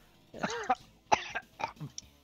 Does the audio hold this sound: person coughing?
yes